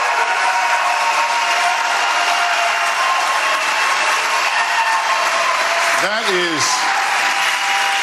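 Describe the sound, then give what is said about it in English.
A large audience at a presidential debate claps steadily and loudly for several seconds after Governor DeSantis's closing statement, a dense wash of applause, with a brief rising-and-falling whoop cutting through near the end. “The next line says if the audience can hold their applause. That didn't work out.”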